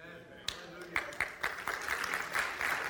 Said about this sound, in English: Oh, don't patty cake. If you're going to clap, clap.